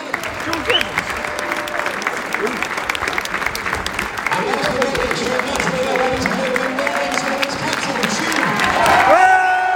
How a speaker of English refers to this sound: Fantastic cheer for Coley. Get his medal. Whole team lined up on the podium.